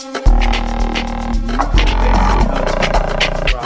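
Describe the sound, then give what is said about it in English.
A deep, growling bass line rumbles beneath steady amapiano percussion, with a gritty, snarling texture that swells and shifts pitch across a few seconds of dense, loud music. “Percussion, growling bass. Can you hear this growling?”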